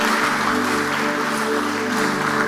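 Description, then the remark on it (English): An audience claps together for the Lord after a healing prayer, a dense, steady wash of applause, with sustained musical tones underneath. The clapping holds an even loudness throughout with no voices over it. “Give the Lord a clap of him.”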